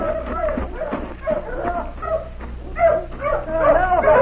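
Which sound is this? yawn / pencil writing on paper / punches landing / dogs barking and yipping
dogs barking and yipping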